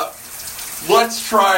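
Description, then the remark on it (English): Steady hiss of shower water running while a man showers, continuous through the whole moment, with brief bursts of his voice speaking over the spray near the end. “I'm going to ramble on and on because now I just want to talk because I'm in the shower.”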